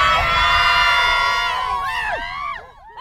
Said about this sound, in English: Who's tough from land and sea? Sirens! Who's going to get the D? Sirens! Let me hear you scream!